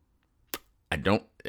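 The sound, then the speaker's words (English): A short sharp click, then a voiced, throaty belch-like sound lasting about a third of a second, fairly loud, a man burping, followed by a brief vocal sound. “And then he burps and goes, hey, girls.”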